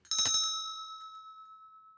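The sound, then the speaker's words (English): A single bell strikes once with a bright metallic clang, then rings on in a long, steady, slowly fading tone with a faint shimmer. Clear, no voices. “Yep, also sounds like a bell.”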